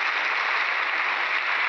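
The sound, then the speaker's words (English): A steady, dense wash of studio audience applause on the Lux Radio Theater broadcast after Merle Oberon, George Brent and Pat O'Brien are announced, many hands clapping at once into a continuous hiss-like roar that holds an even loudness throughout, with no voices. “Your three strong reasons for that applause.”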